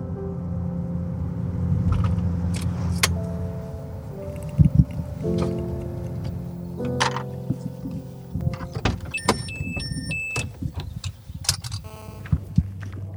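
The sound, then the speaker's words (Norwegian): Sounds around a parked car on a spring day in Indre Østfold, Norway, with a low engine-like hum, sharp door clunks, a short electronic chime, then scattered footsteps moving off as people leave the car and walk down to a white wooden house. No one speaks. “Ja, vi går fra bilen og ned til Kvite Trehuset”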